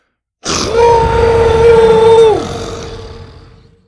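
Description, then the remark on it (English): Buck, a yellow-striped dinosaur, raises his head to the sky in an arena with stone arches and gives a single loud, bellowing roar that bursts in, holds a steady, mid-pitched tone for about two seconds, then breaks off into a slowly fading, rumbling tail, with no voices. “Filling his yellow-striped chest with air, Buck raised his head to the sky and let out a bellowing roar that made the arena's stone arches vibrate.”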